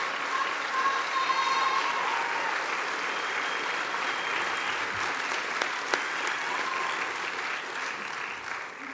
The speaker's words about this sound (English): And to the class of 22, if you want to give this faculty one more round of applause before you leave this place, you can do it.